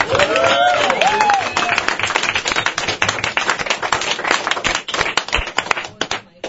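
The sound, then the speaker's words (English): An audience breaks into sustained applause for 'the dollhouse', dense overlapping claps rolling on for several seconds, with a cheer or whoop rising briefly near the start before the clapping gradually thins out. “Let's hear it for the dollhouse.”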